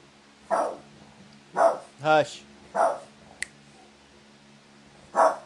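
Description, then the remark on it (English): A dog barks five times at uneven intervals, loud, one bark more drawn-out and tonal than the rest, with a brief sharp click between barks. “there's the dogs, told you.”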